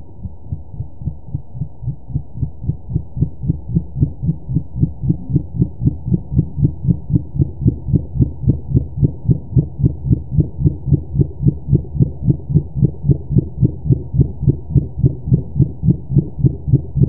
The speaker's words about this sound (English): the sounds that we typically connect with minke whales, they are these low frequency pulse trains